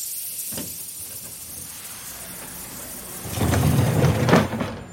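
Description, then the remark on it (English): A train hisses as it pulls into its first station, Chicago: a steady airy hiss with a short burst early on, then a louder surge of hissing steam over a low rumble toward the end. “In fact, we're pulling up to our first station.”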